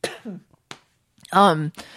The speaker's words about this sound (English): Sorry, I'm sorry. I keep coughing.